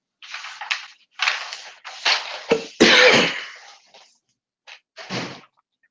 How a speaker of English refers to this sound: I'll be worrying you with my cough. So just have to try and reduce the volume of your on your phone if you don't want to have issues with your ear.